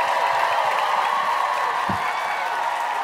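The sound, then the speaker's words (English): A comedy show audience applauds itself at the start of the show, a steady, dense wash of many hands clapping together at an even, fairly loud level for the full three seconds, with no voices standing out. “Clap it up for yourselves one more time.”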